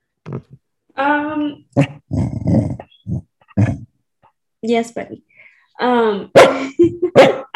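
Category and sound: animal, dog growling and barking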